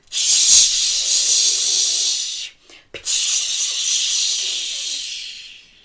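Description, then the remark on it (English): A fire hose sprays water in a steady, bright hiss, cutting off briefly after about two and a half seconds before gushing again at full strength for a few more seconds. “Can you get your fire hose out and get ready to spray down the fire?”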